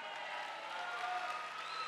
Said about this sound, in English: Because you blessed us yesterday with the table tennis board. Clap for this man.